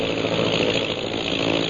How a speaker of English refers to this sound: Look up there. That plane is carrying a dozen eggs right now.